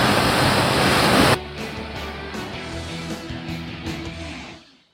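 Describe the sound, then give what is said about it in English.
An artificial freshwater wave at a wave park in the desert crashes in a loud roar of white water, then settles after a second into a softer churning wash that fades away. “A freshwater version of the perfect wave, an oasis of stoke in the desert.”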